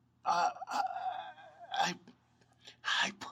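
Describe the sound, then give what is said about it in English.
A voice imitates a dying man's gasp: three sharp, breathy intakes, linked by a strained, wavering groan that trails off between them. “His lips open and close, and finally he gasps.”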